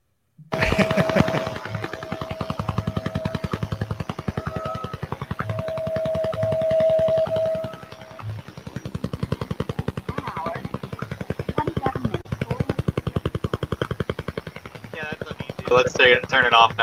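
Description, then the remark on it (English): A Russian Woodpecker over-the-horizon radar signal: a loud, relentless stream of rapid clicking pulses, like fast mechanical tapping or a rotor, with faint whistling tones and static drifting through. “Yes, this is the Russian woodpecker signal.”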